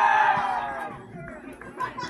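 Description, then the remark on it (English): A baseball crowd roars and chatters in a dense, steady wash of voices as a batter comes to the plate with a runner on first base and nobody out, loudest at the start and then swelling again with scattered shouts. “Crowd's getting all worked up.”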